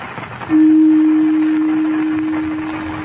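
A gong is struck once to call the council together, its deep, steady hum swelling in suddenly and ringing on for several seconds as it slowly fades over a faint background hiss.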